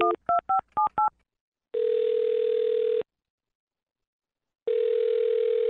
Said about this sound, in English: Well, dial this phone number right now and see if we can get him on the phone. You ready? Okay. Here we go.